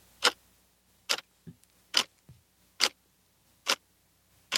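A clock ticks steadily, sharp bright ticks spaced just under a second apart, with softer, duller tocks falling between them. No one speaks.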